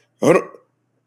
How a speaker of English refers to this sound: I just belch. Hashtag unprofessional.